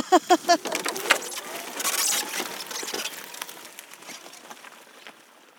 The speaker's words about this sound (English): Would you believe it? Another squall